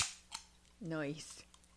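A can of wine pops open with a sharp crack and quick hiss, then a short click, a brief wordless vocal sliding in pitch, and another soft fizz.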